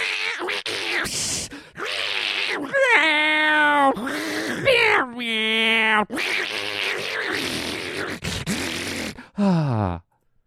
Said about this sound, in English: And they're having that late night horrible cat sex that you hear?